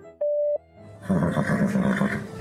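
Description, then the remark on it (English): A single steady, mid-pitched beep of the Horse Radio Network voicemail line lasting about a third of a second, followed after a brief pause by a loud, dense, rumbling burst of sound. “Please leave your voicemail after the tone.”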